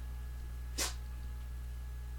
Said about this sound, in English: If you heard a sneeze, that was one of our cats. He was putting his 2 cents in.